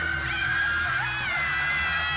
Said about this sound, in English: Oh, the headless woman is even screaming.